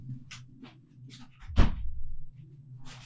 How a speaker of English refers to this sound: I just heard the bedroom door. Didn't close it properly.